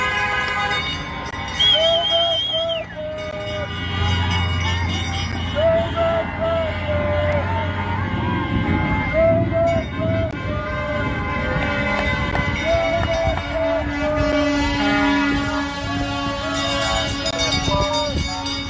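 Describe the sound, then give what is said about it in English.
A seemingly endless convoy of heavy trucks rumbles past, air horns blaring in long overlapping blasts, with whistles and crowd noise mixed into the loud, continuous din. “Okay, yeah, we stopped counting and the trucks are there, they keep on coming, so get out and show your support, whatever town you're in.”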